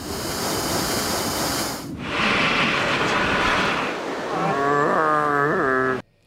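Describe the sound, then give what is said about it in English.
Chewbacca's loud growling roar from a Headspace Star Wars-themed mindful meditation, starting as a breathy rasping rumble, then rising into a wavering, howling bellow with sliding pitch before cutting off abruptly. No one speaks. “It's released Star Wars-themed mindful meditations this morning, with one allowing us to zen out with Chewbacca.”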